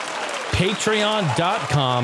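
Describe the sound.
A steady round of applause for patrons shown on screen fills the background while a voice rises and falls over it in a few bursts, loud and continuous for the full two seconds.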